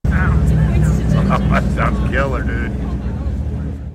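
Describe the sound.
A simulated engine hum of an electric car plays through a speaker as it is revved, a steady low, buzzy drone that holds fairly constant and loud, with people talking over it.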